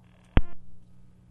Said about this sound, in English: Okay. Okay. I hope we're not having a problem with the phone, and it's just a momentary glitch.